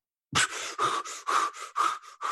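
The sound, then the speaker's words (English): A person imitates how people with fear-based mental disorders and low CO2 tolerance breathe when asked to hold their breath: about eight quick, harsh, breathy huffs in a fast, steady rhythm over two seconds, each one loud and airy, with no talking. “And people with fear-based mental disorders, whether it's anorexia or agoraphobia or whatever, they tend to breathe way too much because they have a very low tolerance for CO2. You ask them to hold their breath, they go.”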